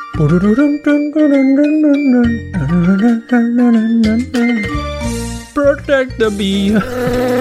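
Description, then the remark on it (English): A voice imitates a bee buzzing in flight: a loud, continuous nasal drone that wavers up and down in pitch, with a few breathy, hissing bursts near the end. “Protect the bee. Flying for hours, looking for flowers, serving the queen.”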